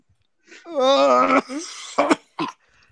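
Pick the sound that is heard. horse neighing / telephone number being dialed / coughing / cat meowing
coughing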